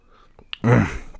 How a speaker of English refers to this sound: Hold on, let me sip some coffee here.